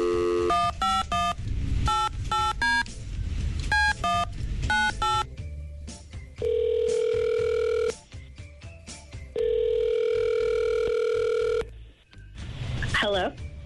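A rapid series of dual-tone keypad beeps dials a number for a call on the Keola Show, followed by two long, steady ringback tones with a brief pause between them, then a garbled pickup sound.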